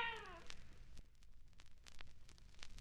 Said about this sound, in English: But in fact, this time, the cat responds back. This is a pipe. Meow. This is not a pipe. Meow.